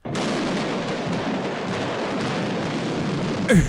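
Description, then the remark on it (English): A massive firework factory explosion roars continuously, a dense, loud wall of crackling blasts lasting several seconds, ending with a sharper burst and a brief descending whistle. No voices. “Just a whole firework factory exploded.”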